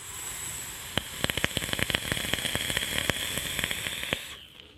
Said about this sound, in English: This is the most crackable popping coil that I think I have ever put into an atomizer. That is loaded up with Rainbow Sherbet in the Dark from the Grim Cult line, just one of my favorite juices of all time. But would you listen to this coil?